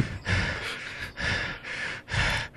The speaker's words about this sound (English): Your breathing is really uncomfortable, and it sounds like your breathing's in shape.